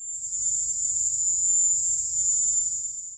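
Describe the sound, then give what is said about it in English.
A continuous, piercing high-pitched drone resembling the cry of the Cuban cicada, a sound reported by U.S. diplomats and intelligence officers, holds steady for the whole stretch, loud, with a faint low rumble underneath and no talking. “a sound that seemed suspiciously similar to the high-pitched cry of the Cuban cicada”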